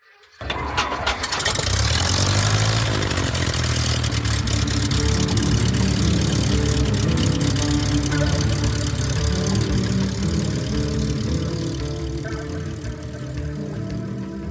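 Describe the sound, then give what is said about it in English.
After a "clear prop" call, a propeller aircraft engine cranks and catches, then settles into a steady, loud, low rumbling idle with a throbbing drone that continues unbroken to the end. “prepare for takeoff on today's adventure, painted into a corner, about a scary flight facing down thunderstorms in the dark of night. This is one flight I don't care to repeat. Clear prop.”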